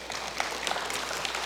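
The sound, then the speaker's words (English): A church audience applauds after the pastor announces that his first grandbaby, a girl, is due in June: a dense, continuous patter of many hands clapping at a steady moderate level, with no voices standing out. “Some of you are not clapping because you know what we're in store for, maybe.”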